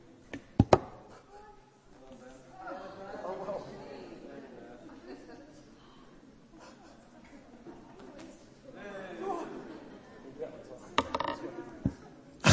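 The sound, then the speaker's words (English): Scissors snip through something in a few sharp, crisp clicks, a pair near the start and a quick cluster near the end, with a low murmur of voices chattering in the background. “This is what Abraham would have done with scissors.”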